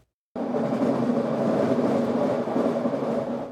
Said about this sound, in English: Last month, we showed you how the aging Expo line is getting noisier, especially through Burnaby and New Westminster. Now we're hearing that all SkyTrain cars will be modified with a device to reduce the screeching and grinding.